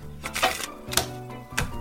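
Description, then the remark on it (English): Three short, crisp bursts of papery riffling as playing cards are shuffled, spaced about half a second apart over a faint steady hum. “I'm going to give these cards a quick shuffle.”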